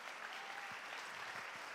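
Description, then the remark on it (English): An audience claps their hands to the Lord during a sermon, a dense, steady wash of applause, many overlapping claps blending into a continuous crackle with no voices standing out. “Oh, somebody clap your hands unto the Lord.”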